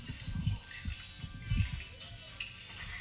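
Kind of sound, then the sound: nature, water dripping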